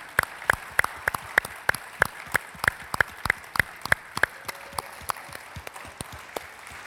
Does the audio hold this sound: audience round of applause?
yes